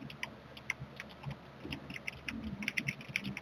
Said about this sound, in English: Type. Yeah. But get a little keyboard. I probably could have just said it out loud instead of typing it.